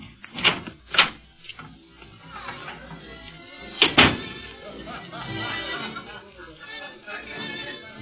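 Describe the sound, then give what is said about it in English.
A door opens and shuts, with two quick knocking thuds early on and another sharp bang a few seconds later, over a steady murmur of background chatter. “Oh, here's the door. You go in first.”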